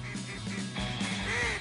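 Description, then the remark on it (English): A duck quacks in a quick run of nasal, raspy calls, several back to back at moderate loudness, with no talking. “would they kill a duck and put him in a pot and make him a good duck gumbo?”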